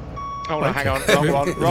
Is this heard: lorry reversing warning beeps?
yes